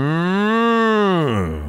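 A single loud, drawn-out cow moo lasting under two seconds, its pitch rising slightly and then sagging downward as it fades at the end, heard on its own with no talking.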